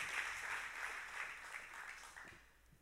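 An audience gives the Lord a strong round of applause, many hands clapping in a dense, steady wash of crackling noise with no voices over it. The clapping holds for a few seconds, then begins to thin and fade toward the end.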